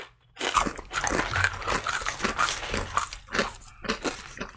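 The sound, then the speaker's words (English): Steady, wet chewing and crunching of thick, garlicky hummus eaten with Simply Naked chips, a rapid series of moist bites and munches with no talking, continuing throughout at moderate loudness. “It is very flavorful. You know, it is that more aggressive hummus. Yeah. I'm eating a lot of it.”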